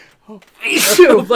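A single loud sneeze: a short breathy intake followed by a sharp, noisy burst with a voiced tail, heard on its own without talking.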